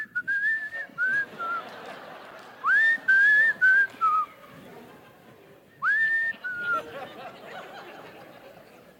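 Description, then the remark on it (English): Someone whistles a bright, lilting tune in short melodic phrases, rising and gliding notes with brief pauses between them, clear over a soft background murmur. “Baby, when you clean the garage, he don't even know why. He'll be whistling.”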